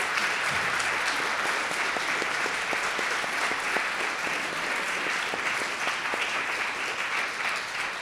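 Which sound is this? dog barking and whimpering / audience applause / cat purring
audience applause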